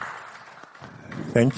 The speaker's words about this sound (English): Please give her a round of applause as she comes to the stage.